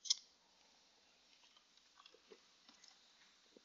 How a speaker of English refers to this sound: I'll give you some time to get there. And while you get there, I'll sip some water.